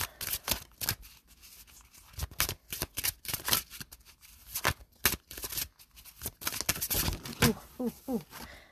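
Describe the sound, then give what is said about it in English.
Messy shuffling of a card deck: rapid, irregular flurries of papery slaps and riffles, fairly loud, running continuously for several seconds with short pauses between bursts. “All of these cards. I feel like they just messy shuffling.”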